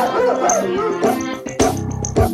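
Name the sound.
dog barking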